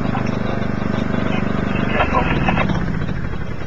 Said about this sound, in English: Hey! Hey, man, turn the lawnmower off!